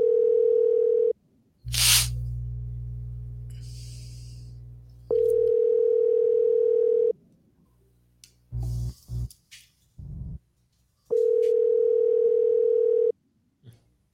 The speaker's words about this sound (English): All right, let's try this again. We're going to give him another call here, and hopefully he's all right.